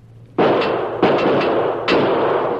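Three loud revolver shots crack out in an uneven rhythm, each one a sharp blast followed by a rumbling, lingering decay, used to shoot a lock open.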